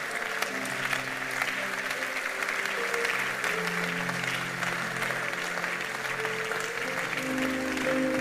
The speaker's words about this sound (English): All those hands lifted up. Come out here. I want to pray for you. Just come. Clap for them as they're coming.